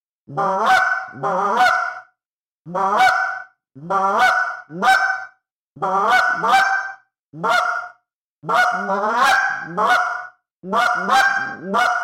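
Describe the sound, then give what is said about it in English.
A loud series of goose honks and quick clucks made with a goose call, sounding like more than one goose, coming in short bursts of two or three notes with brief pauses, repeated about eight times with no one talking. “So let's just go through just a honk and a cluck kind of sequence if you're out in the field and you've got geese on the horizon.”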